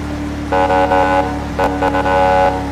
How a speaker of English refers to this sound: Oh wow, the horn sounds more like a civilian horn. Wow, impressive.